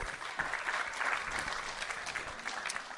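An audience applauds steadily for about three seconds, a dense, even wash of many hands clapping with no voices standing out.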